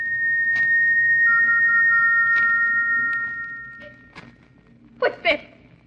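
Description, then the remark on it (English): An eerie, thin whistle in a bedroom at Stoke Moran, England, late at night as a storm brews, holding a steady high pitch for about four seconds over a low rumbling background, then fading, followed by a few soft knocks and a short breathy burst. “What's that whistle?”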